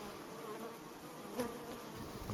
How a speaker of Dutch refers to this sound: We letten op de bijen, dat ze rustig blijven. Bij je volgende deze honing. Oh ja. Ja. Kijk, het één bijtje die volgt. Die bijen volgen deze honinggeur.